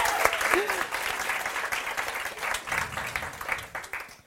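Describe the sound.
Steady applause from an audience, a dense patter of many hands clapping for several seconds, with a brief voice or cheer rising faintly above it.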